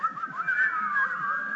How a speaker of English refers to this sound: Like, can anyone whistle? Can you whistle? Show me if you can whistle.